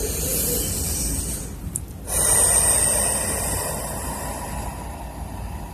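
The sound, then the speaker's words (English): A slow, deep breath drawn in and released during a guided breathing meditation, airy, with a brief pause partway through before the exhale swells and fades out gradually. No talking. “Continue breathing.”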